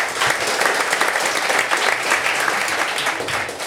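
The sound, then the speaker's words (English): An audience at a Running Channel show applauds a special guest steadily, a dense wash of many hands clapping at once, loud and sustained throughout with no voices rising above it. “If we could have a massive round of applause for her.”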